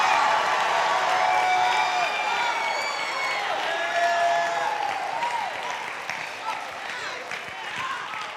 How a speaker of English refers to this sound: if you know what I'm talking about, then let heaven hear you roar a praise to Jesus.